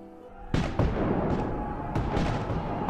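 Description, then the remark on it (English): A sharp, loud boom at about half a second, followed by dense, rumbling blasts and crackling reports that continue steadily: cannon fire. “Life was certainly different to before, but I soon grew accustomed to the music of cannon fire and the dirt and camaraderie of life in the army.”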